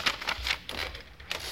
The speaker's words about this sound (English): It has come to my attention that certain... another typewriter smashed up. I know Mama wanted me to grow up to be a He-Man, but why did she teach me to type with my fists?